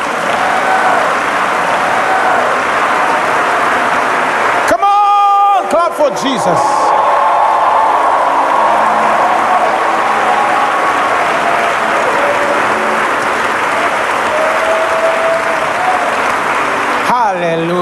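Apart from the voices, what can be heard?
audience clapping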